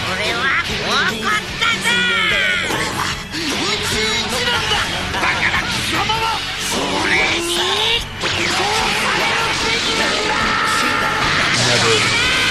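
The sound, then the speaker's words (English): Intense, sustained yelling with strained, rising screams over a loud, dense backdrop of crashing impacts and energetic effects, continuous throughout like a dramatic anime power-up scene. “because when the yelling just sounds amazing.”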